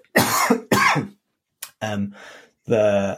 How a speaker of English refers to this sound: And I guess, sorry, I'm just going to cough.